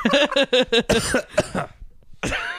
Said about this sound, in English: Man, immediately ruined it. Coughing like that cat. I can't believe a week later you're actually sick.